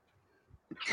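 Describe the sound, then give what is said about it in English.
A single sneeze: after near silence, a couple of soft breathy intakes lead into a sudden loud, hissing burst that swells right at the end. “So excuse me. Bless you.”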